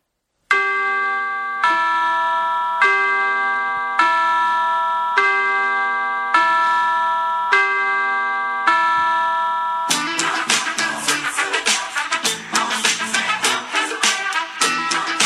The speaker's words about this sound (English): They did everyone's favorite Christmas song, Carol of the Bells.